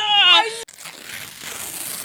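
Someone blows steadily into a cup of tea, making a soft, breathy rush of air that lasts over a second, preceded by a brief warbling voiced tone and a sharp click.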